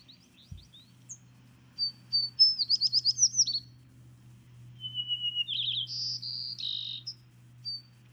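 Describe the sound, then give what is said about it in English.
A song sparrow sings a clear, varied phrase of high notes, buzzy trills and quick repeated chirps, repeated twice, with a faint low hum and insect-like drone in the background and no talking. “Is it a song sparrow? Yeah, it's a sparrow.”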